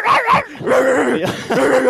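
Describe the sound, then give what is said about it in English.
A dog barks and yips several times in quick succession, loud, with whiny, high-pitched tones between the barks and no talking, on the Ridgeway, a 5,000-year-old road. “Who released on that dog?”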